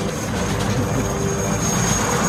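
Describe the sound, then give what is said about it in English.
The Russian leader's big helicopter engine roars steadily and loudly as it lines up, with a thick low rumble under a thin high whine that holds for the whole stretch. No voices are heard. “We're seeing their point of view, of course, the Russian army and the Russian leader in his big-ass helicopter right in the dead center lining up.”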